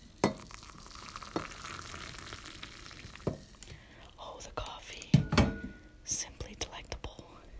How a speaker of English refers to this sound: As my little red steamer blows out the air in the morning, I enjoy making my cup of coffee.